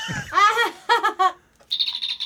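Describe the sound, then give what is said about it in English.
A toy communicator made like the classic Star Trek communicator chirps electronically: a long warbling squeal, two short bursts, then a steady high-pitched trill. The tones are fairly loud and dolphin-like, with no talking over them. “And this is my communicator. Nice. Cool. And I can communicate with it.”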